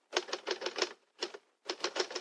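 Keys of an Underwood typewriter clack in quick bursts as an expression is typed out: a run of about five strikes, a short pause, two more, then another rapid run, crisp and fairly loud with no voices.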